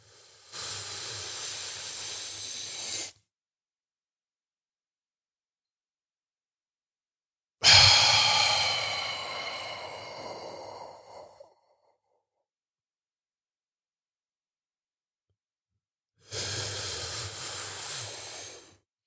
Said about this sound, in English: That is 2 rounds of box breathing right there. I tried my best not to sound like Darth Vader, but that's how it should sound. It should sound like a really slow Darth Vader.